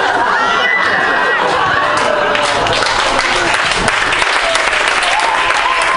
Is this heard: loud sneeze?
no